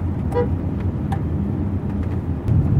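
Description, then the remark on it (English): A short, shrill squeal of car tires rises over a steady low rumble of engine and road noise, followed by a fainter second chirp, as the car follows a twisty course along a lake's coastline. “We just heard some squealing of tires.”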